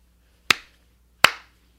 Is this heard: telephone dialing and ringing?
no